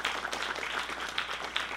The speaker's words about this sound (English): Amen? Amen. Amen. So give God a clap offering.